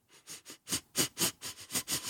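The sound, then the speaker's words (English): A person makes a quick run of about nine rhythmic sniffs through the nose, growing louder partway through, imitating the face sniffing some cultures use. No talking. “Then there's some cultures, they sniff faces.”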